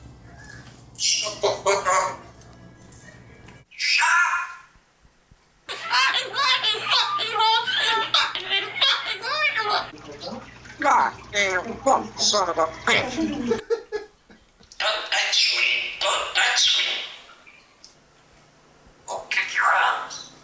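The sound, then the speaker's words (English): Parrots squawk and chatter in raspy, human-like voices, mimicking spoken swear words in loud bursts with short pauses, mixed with shrill cackling calls. “But I got an audio of the swearing birds.”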